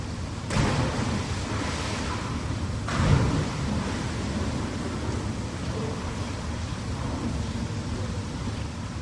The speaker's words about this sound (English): Here we go with the jump off the 4-metre-high platform into the water. I have to say, it looks a lot higher than 4 metres.